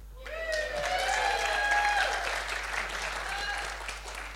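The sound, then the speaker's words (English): An audience breaks into steady, unprompted applause after an announcement that the kids connections director will begin working full-time, dense and sustained for several seconds, with a few voices and cheers rising faintly through the clapping. “Clapping without cue, well done.”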